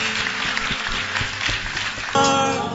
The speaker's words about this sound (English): Clap for our brothers and sisters. Is that the clapping you can do for them?